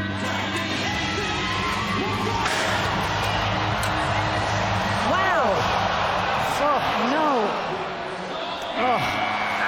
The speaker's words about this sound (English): All right, you heard the crowd cheering for him, the support as he walked off, but we could both also feel and hear the collective gasp when he was underneath that bull.